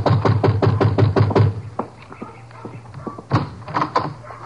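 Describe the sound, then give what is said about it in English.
A rapid series of sharp knocks on the wooden door of Shady Rest, a shabby rooming house, about eight quick raps, followed by a pause and a few more scattered knocks and thuds, fairly loud. “Now, you better knock again.”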